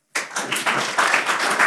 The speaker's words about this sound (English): And give a big hand of applause to our DAG voorzitter, here at the table,